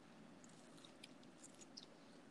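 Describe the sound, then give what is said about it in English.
Someone chews a crispy fry close to the mic, with scattered crisp, brittle crackles over a steady low hiss. The crunching is quiet and irregular, and no one speaks. “This is a good crunchy one.”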